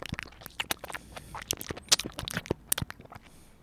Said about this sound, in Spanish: Fresh Mel, de miel me imagino que viene. Y me voy a mandar uno. Esto no es ningún tipo de droga. No necesito prescripción para consumir esto. Que solo se chupetea. Así que ahora voy a tener un exquisito sonido de chupeteo.